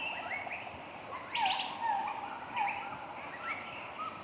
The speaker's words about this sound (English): boat starts to slow down and turns into a side canal off the river. We're now entering a whole new territory that is completely unexpected considering where we just were. The sound has disappeared. It's quiet. You hear birds and insects.